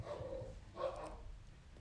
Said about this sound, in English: if you hear a little bit of growling, it's just some doggies running around in the back. You're just playing.